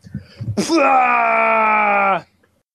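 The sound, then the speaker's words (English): A man lets out a long, loud, sustained scream of rage, holding one strained pitch for about a second and a half after a brief low mutter, then cutting off abruptly. “All right, as I'm screaming,”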